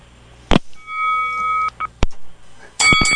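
A bell is rung on a radio show to mark a correct trivia answer: it is struck several times, each sharp clang followed by a bright, steady ringing tone, with a quick cluster of rapid hits at the end and no voices.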